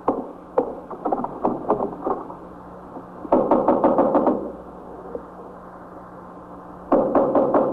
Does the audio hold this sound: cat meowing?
no